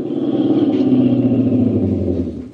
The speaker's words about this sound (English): As I hiked along, I kept thumbing cars. The fourth one slowed down and stopped.